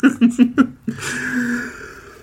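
sneeze

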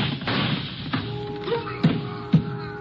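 gunshots

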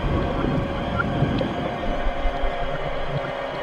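whale song

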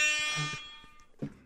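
air horn blast

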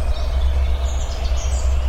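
bird calling

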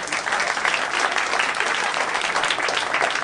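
audience applause

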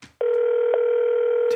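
telephone dial tone

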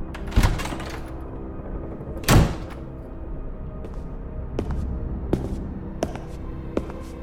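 door opening

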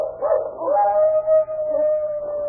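dog howling

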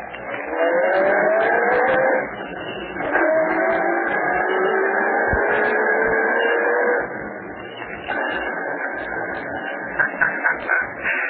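car engine driving away

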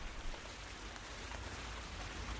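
rain falling

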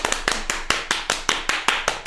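hand clapping applause

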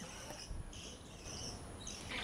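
birds chirping

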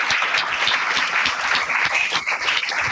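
audience applause

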